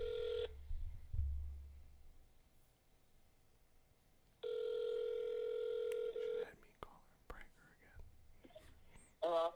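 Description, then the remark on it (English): A telephone ringback tone of a call placed to someone's mother: a steady, buzzy mid-pitched ring heard briefly at the start and again for about two seconds, followed by faint clicks and soft whispering. “All right, we got one more. Who we calling?”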